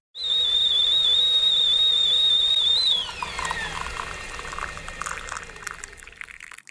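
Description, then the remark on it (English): A kettle, put on for tea, whistles loudly with a steady, shrill, high tone for about three seconds, then the pitch slides down and fades into a softer hiss and bubbling of boiling water. “We'll get the kettle on and we'll get to our brew review in just one moment.”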